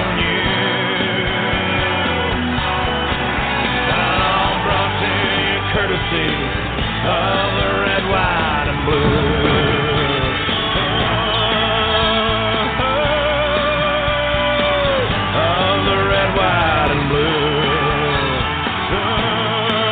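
A country rock song plays steadily and loud throughout, with dense guitars, drums and sung vocals filling the whole stretch without a break.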